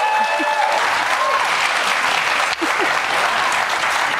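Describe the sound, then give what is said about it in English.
A studio audience applauds steadily: dense, continuous clapping holds at an even, fairly loud level for about four seconds, dipping only briefly midway before carrying on. “They didn't clap once for me.”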